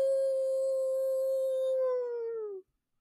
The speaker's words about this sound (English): So the reason that it got its name Ahool, it's because when it would screech out, it would make a very loud, distinct cry, and it would go Ahoo.